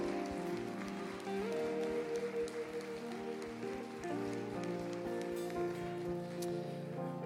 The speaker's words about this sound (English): Come on and give Jesus a hand clap of praise this morning.